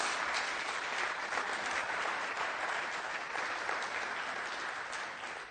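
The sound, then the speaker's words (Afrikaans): A festival audience claps for everyone who worked on the festival, a dense, even wash of many hands that holds at a strong level throughout and eases off slightly at the very end. “Ek dink kom ons gee sommer 'n lekker hande klap vir almal.”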